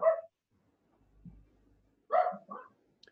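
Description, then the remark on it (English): A male dog barks sharply once, falls quiet for nearly two seconds, then lets out two more quick barks, with no one talking. “So your dog is very I'm very lovely.”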